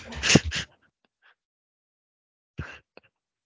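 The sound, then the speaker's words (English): A dog barks twice, a loud bark followed after a couple of seconds of near silence by a shorter, quieter one, with no talking over it. “Post bark.”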